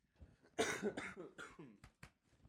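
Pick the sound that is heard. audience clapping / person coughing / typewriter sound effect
person coughing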